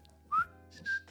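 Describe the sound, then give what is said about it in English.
A person whistles two short notes, the first rising quickly in pitch and the second held steady, each with a breathy airy hiss, fairly clear with no talking. “Yeah, I just know the conventional whistling.”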